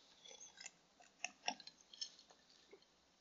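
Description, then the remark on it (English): Someone takes a quiet sip of a drink: a few soft wet mouth clicks and a brief slurp and swallow, with no talking. “Okay, I'm gonna take a sip.”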